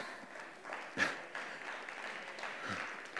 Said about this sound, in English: Thank you for that arousing applause.